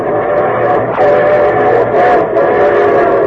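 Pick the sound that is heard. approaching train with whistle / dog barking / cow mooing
approaching train with whistle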